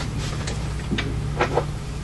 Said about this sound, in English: Okay, I'm going to take the butt of my mace and I'm just going to knock on the door. Dun, dun, dun, dun.